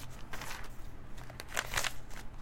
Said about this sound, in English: All right. Ignore my shuffling notes.